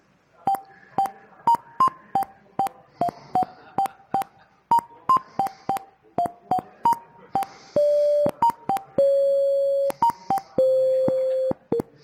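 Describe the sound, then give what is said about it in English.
Computer-generated alarm clock tones made in PowerShell: a quick run of short, clipped electronic beeps hopping between a few pitches, followed by several longer sustained lower tones, all loud and steady with no voices. “But basically what we just did is we built an alarm clock, encapsulated it into, be able to put it inside of a PS1 file”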